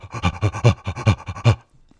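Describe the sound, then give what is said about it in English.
Rhythmic, guttural, gorilla-like breathing made by a crouching man breathing into a tube: about a dozen quick, harsh pants in a steady pulse, loud, ending abruptly after a second and a half, followed by faint quiet. “He started doing this sort of rhythmic, guttural, gorilla-esque breathing through the tube.”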